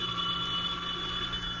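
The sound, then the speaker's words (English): A telephone rings steadily during a storm in a continuous, sustained trill at moderate loudness, with no voices present. “Phone. How could it be? Nobody knows I'm here.”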